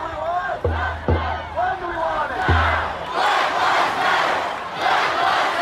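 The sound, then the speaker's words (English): A crowd of thousands of protesters speaking out against police brutality after the death of George Floyd, shouting and yelling together, voices overlapping loudly and steadily, with a few heavy low thumps in the first half and a sustained roar of noise throughout. “Protesters gathered by the thousands this weekend to speak out against police brutality.”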